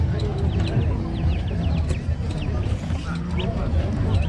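A small flock of chickens clucks and chirps continuously, with overlapping short calls over a steady, busy background murmur.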